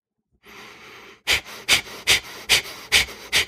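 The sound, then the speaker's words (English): A slow hissing inhale through the nose, then six sharp, forceful exhales of the Kapalabhati (breath of fire) breathing exercise in a quick steady rhythm, fairly loud, each a short noisy burst. “One is called Kapalabhati, which is also known as breath of fire, and it means skull illumination.”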